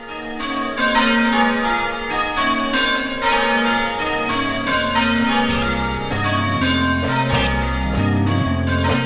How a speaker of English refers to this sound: Now I hear the bells calling me to church.